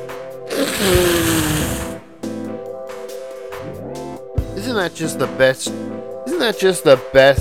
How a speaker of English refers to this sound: And now, a return of another feature, Blow My Nose.